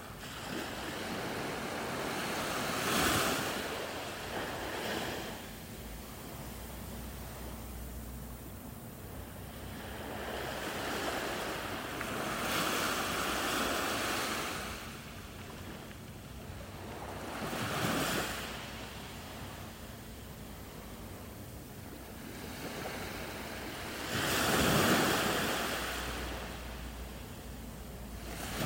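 Ocean waves at Monterey Bay roll in and break on a beach in slow, repeating surges, each crash swelling into a broad hiss before receding, with a steady wash of surf and light wind between them.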